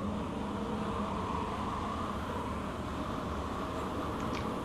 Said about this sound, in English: Oh my god, those are airplane sounds.